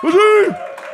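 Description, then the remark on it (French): An audience applauds Maisonneuve, on Sainte-Catherine: a loud, sustained whooping cheer from a voice rises and falls in pitch, then drops away into a softer wash of crowd clapping and noise. “On applaudit Maisonneuve!”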